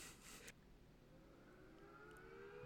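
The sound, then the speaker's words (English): A short burst of noise gives way to a siren wail that climbs steadily in pitch, sustained to the end over a low rumbling background. No one speaks. “Oh, you hear that? It's time to get on your Twitters. God. Before the sirens get you.”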